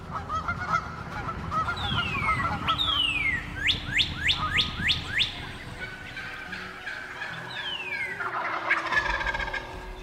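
Waterfowl honk in a steady, overlapping chorus, with sliding calls and a quick rhythmic run of sharp honks midway, all over a low background rumble and no talking.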